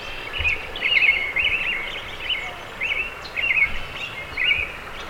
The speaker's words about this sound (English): Alongside the river, bright, lush clusters of trees and bushes are home to a noisy chorus of birds.